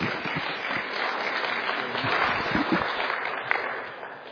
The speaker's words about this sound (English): It's such a joy to be here. You don't have to clap for me. I'm one of you, a member here. But thank you for the welcome and the opportunity to preach.